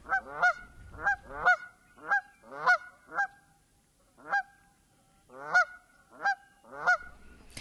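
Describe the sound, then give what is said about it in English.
Canada geese give repeated two-syllable honks, loud, in an irregular series of about a dozen calls with brief pauses between bursts. No talking. “The Canada goose really needs no introduction. It's a giant bird with a black neck and a white chin strap. Its call is the two-syllable honk.”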